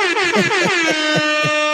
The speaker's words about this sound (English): 3 month membership ear horn to you too, baby. It's the fog horn. Air horn. My bad.